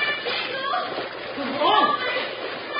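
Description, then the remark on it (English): A heavy freight wagon with its horses and riders plunges into rapids after the timbers of Long Bridge, cut by a shot, give out: a big splash, then a steady roar of rushing, sloshing water that swells into a heavier surge partway through and keeps rolling on, dull and muffled. “When the heavy freight wagon, driven by Jingles with Laura as passenger, crossed Long Bridge, the timbers, cut by one shot, gave out, plunging horses, wagon, and riders into the rapids below.”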